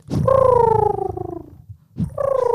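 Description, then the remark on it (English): A person imitates a pigeon's coo as a 30-second talent during a halftime break, with two throaty, voiced calls. The first is long and slowly falling in pitch, and a second begins after a short pause. “I can sound like a pigeon.”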